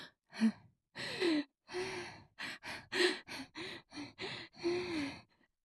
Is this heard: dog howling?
no